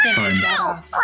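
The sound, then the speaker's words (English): A person's voice mimics a screaming, hissing cat in a single loud, strained yowl that bends in pitch, then breaks into a breathy hiss at the end. “She's hissing. I'm sorry. The cat's back.”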